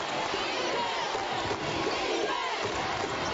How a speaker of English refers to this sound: Woodland fans stomping their feet, making noise.